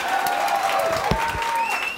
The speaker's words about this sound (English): Here we go. Let's practice our applause. One, two, clap. On the count of three. One, two, three.